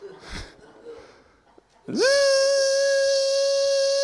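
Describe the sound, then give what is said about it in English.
After a couple of seconds of quiet rustling, a dog lets out a loud, sustained whine or howl that swoops up in pitch and then holds one steady, piercing note until the end. “Oh, I hear, what are you making noise there? No, it's fine. It's fine. It's a dog.”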